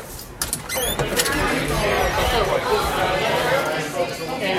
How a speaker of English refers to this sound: Say hi to a few people, walk through the crowds, back past the brewing kettles, as there is a fresh batch of beer being brewed as we speak.